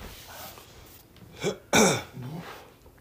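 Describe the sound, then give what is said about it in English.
A loud burp after shotgunning a Modelo beer bursts out after a small throaty catch, then trails into a softer guttural grunt. There is no talking, just quiet background noise around it. “Burping. We're currently dying.”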